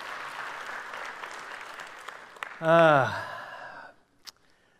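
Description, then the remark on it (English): Steady church audience applause at First Church after a scripture reading, a dense wash of clapping that carries on for a few seconds, with a single loud voiced whoop or cheer swelling over it before the clapping dies away. “Yeah, you can give him applause.”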